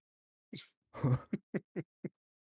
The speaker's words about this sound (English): I'm going to sneeze heavily again.